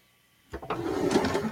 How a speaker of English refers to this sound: Okay, is it a drawer? Sounds yes. Oh. It's a kitchen drawer. It's a kitchen drawer. Yes.